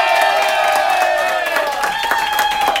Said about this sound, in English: Give a round of applause for Ivana.